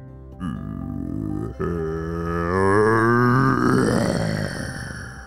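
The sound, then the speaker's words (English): A voice imitates the growl of a sandcastle monster pouring out from the shaking ground of a beach: a deep, rough, drawn-out roar that briefly breaks after a second, then swells louder and grittier before trailing off, with no other sounds around it. “As the ground shook and that growl poured out from the ground, he saw it.”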